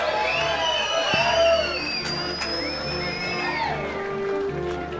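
A loud, dense wash of crowd noise at the end of a live show at Cooley, with cheering, whoops and scattered clapping holding steady for several seconds, plus high whistles sliding through the din.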